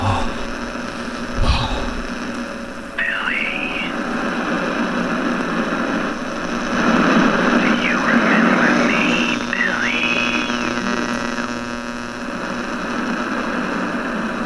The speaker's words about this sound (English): The static roars. The voice fades into the static itself.